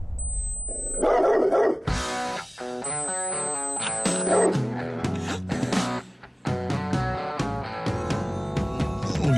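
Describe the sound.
A man mimics a dog during a Talk Radio 790 KABC broadcast live from Culver City, letting out a loud, continuous run of voiced barks and yelping howls for several seconds, with a thin high whistle tone briefly in the background.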